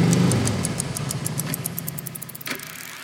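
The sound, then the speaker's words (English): A motorbike engine runs with a steady low rumble and a fast, regular ticking pulse on top, strongest at the start and gradually easing off. No one speaks. “I get onto the bike and go to find Jet.”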